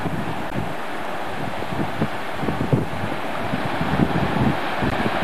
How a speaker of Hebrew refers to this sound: זה מים טובים, לא מי ביוב. שומעים את הנחל מהמקום איפה שעצרנו.